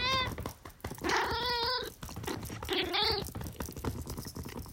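A cat named Snoopy yowls loudly several times, with drawn-out, wavering cries rising and falling in pitch, separated by short pauses and soft background noise.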